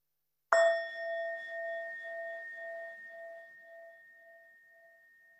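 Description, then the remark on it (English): A single strike of a meditation bell rings out clearly on its own, its bright tone shimmering and wavering as it slowly fades over several seconds. “And when you hear the sound of the bell, just noticing and allowing the changing Vedana of that.”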